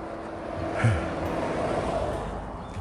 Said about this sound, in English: A car.